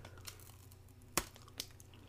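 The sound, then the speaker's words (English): Someone bites into a Nestle Crunch bar: one sharp, loud crunch mid-clip, a softer crackle after it and a faint tick before, over a low steady hum with no talking. “So, Crunch Bar. Let's see how crunchy it really is.”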